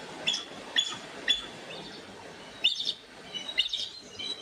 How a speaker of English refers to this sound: And that weird chirping is the eagle.